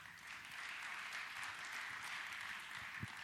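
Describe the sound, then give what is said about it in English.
A crowd applauds steadily as a speaker is called up, a dense wash of many hands clapping at an even level from start to finish, with no voices over it. “We'll give him a round of applause as well.”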